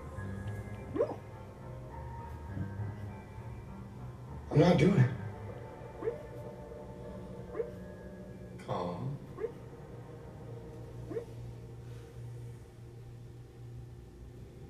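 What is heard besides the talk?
dogs barking and whimpering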